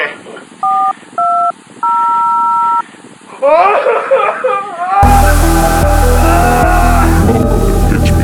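Three touch-tone dialing beeps, two short ones and then a longer held tone, clear and close, followed by a busier burst of sound and then loud, full music.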